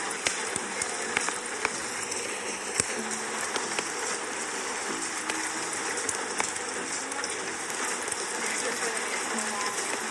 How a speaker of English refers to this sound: A fire. You're right. The crackling of a fire.